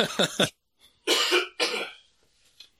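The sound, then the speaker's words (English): A harsh throat clearing followed by two loud, wet coughs in quick succession, then a brief quiet rasp trailing off. “I apologize for all the coughing and phlegm in this episode.”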